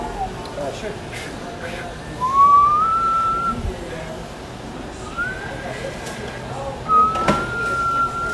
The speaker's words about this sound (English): Wow, I have completely lost my ability to whistle.